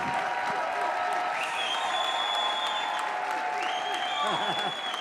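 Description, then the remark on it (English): Conference audience applause for the leadership of two organisers rolls on steadily for the whole five seconds, a dense, even clatter of many hands, with a couple of rising whoops and cheers riding over it. “Come on, no golf clap.”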